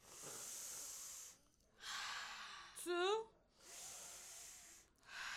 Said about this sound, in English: Today, we'll do a deep breathing exercise. Are you ready?